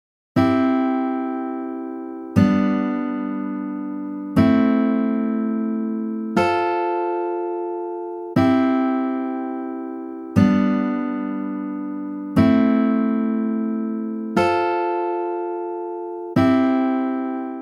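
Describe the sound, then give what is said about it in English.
A guitar chord progression played without the lower strings: nine evenly spaced strummed chords, each ringing and fading for about two seconds, with a thin, bright tone and no voices. “Listen to how it has a thinner, weaker sound without the lower strings being used.”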